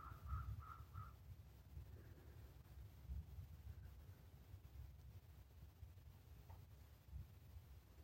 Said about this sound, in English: Taking in the conversation of the crows.